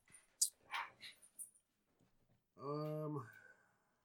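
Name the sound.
dogs barking and whimpering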